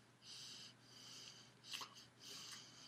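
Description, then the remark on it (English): Heavy, raspy breathing, several airy breaths in a steady rhythm with one sharper snort-like exhale midway, over a faint low hum and no talking. “it's a moment of silence. You're heavily breathing right now.”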